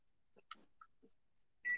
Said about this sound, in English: Hey, wait a minute. The microwave! yes.